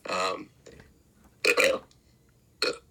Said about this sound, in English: that burp was about 95% pasta. What kind? Penne pasta.